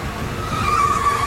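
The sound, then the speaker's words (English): An orange van rumbles up, its tires letting out a steady high-pitched screech as it brakes to a stop right in front, loud and with no one speaking. “He just pulled right in front of us in the orange van, and he's looking right at us.”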